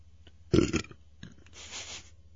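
A short, loud, guttural burp after coffee and Taco Bell, rumbling low for about a third of a second, followed by a softer breathy exhale; no talking.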